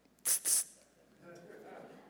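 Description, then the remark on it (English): Two quick spritzes of mist from a Windex spray bottle, sharp hissing bursts back to back, followed by a quieter stretch with faint murmuring underneath. “You spray it again and just goes.”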